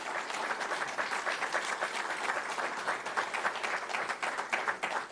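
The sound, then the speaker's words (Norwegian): Sustained applause from an audience welcoming a guest, a dense, steady wash of many hands clapping, continuing evenly for several seconds with no talking over it. “Gi han en klapp.”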